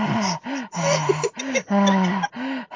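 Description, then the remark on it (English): A voice imitates heavy panting after finishing a run through the woods, with quick, rhythmic voiced breaths, about seven in a row, fairly loud, each huff rising and falling in pitch. “You know, she's panting after she finishes the run going.”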